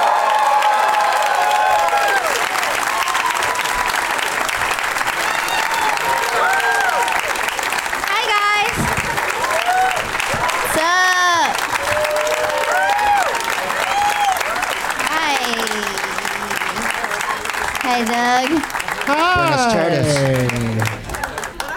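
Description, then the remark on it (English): Loud, sustained audience applause with cheering in San Francisco as guests Chad Opitz, Amy Miller and Greg Proops are introduced, a dense wash of clapping throughout, topped by scattered whoops and shouts that rise and fall over roughly twenty seconds. “Please give it up for my friends Chad Opitz, Amy Miller, and Greg Proops.”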